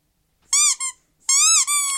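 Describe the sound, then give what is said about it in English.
A dog's squeaky toy sound, played through Alexa, squeaks loudly in two quick bursts, each a shrill, wheezing double squeeze, with a short silent pause between them and no talking. “Alexa, open dog squeaky toy. Welcome to dog squeaky toy.”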